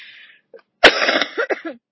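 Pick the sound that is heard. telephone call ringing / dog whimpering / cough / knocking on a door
cough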